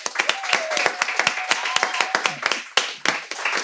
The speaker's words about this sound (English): but let's give a round of applause to our guest,